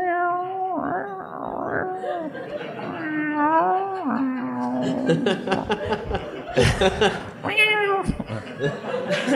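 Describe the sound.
A human voice imitates a dying cat's drawn-out, wailing yowl, sliding up and down in pitch, loud, with bursts of laughter breaking in toward the end.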